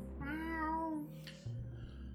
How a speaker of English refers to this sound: In the distance. That... Okay, it sounded like a cat. I told you. It can't be a cat.